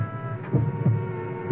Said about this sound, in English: It's my heart. It's my heart beating. I'm hearing my own heart. The only thing I can hear is my own heart.